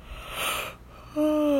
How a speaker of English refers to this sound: Oh my gosh. I'm yawning, but I'm not sleepy. My brain needs oxygen.